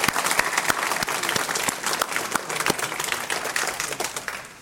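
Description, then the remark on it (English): A crowd applauds steadily to thank event staff, many hands clapping in a dense, continuous patter with a few sharper individual claps standing out, sustained throughout. “Please join me in thanking all of them with a big round of applause.”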